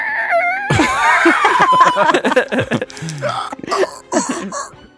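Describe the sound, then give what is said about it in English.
A human voice imitates the screech of a creature sliding onto a stone floor: loud and raspy, starting with a thin wavering cry, then breaking into harsh, gritty bursts and strained gasps over several seconds. “It makes a screeching sound.”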